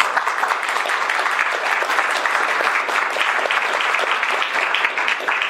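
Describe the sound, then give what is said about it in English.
An audience applauds steadily for the sponsors of the Business Council for Sustainable Energy fact book, a dense wash of many hands clapping at once, sustained at an even level throughout without pausing or fading. “And you know, we will have a very robust conversation, but I just want to thank, and maybe we can give a round of applause for all the sponsors that are listed here.”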